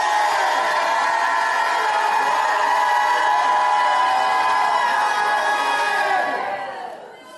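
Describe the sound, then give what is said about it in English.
A loud audience at a preacher's call roars with sustained shouting and cheering, many voices overlapping in a dense wall of sound that holds steady for several seconds before fading out at the end. “My God, I'm going to stop till somebody jumps up and shouts like you never shouted in your life.”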